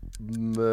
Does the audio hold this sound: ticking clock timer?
yes